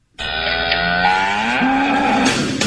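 A single loud cow moo, a long sustained low bellow with a rising pitch, lasting almost three seconds and heard on its own without speech.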